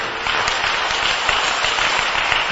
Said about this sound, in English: Is it okay to clap for this word?